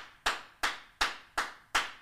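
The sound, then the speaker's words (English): Five sharp hand claps at a slow, steady pace as a round of applause for reaching 1 million followers on TikTok, each a bright crisp smack that fades quickly, with no talking over them. “We hit 1 million followers on TikTok. Round of applause.”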